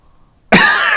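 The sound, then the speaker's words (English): A single loud cough bursts out of near silence halfway through, its rough, breathy sound carrying on to the end with no talking around it. “He's holding his cough.”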